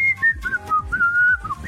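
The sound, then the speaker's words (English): A woman whistles a short, wavering tune outdoors in a shared back garden while hanging up washing, the notes gliding and stepping between pitches in a loose melody with brief breaks, no talking over it. “And she started whistling.”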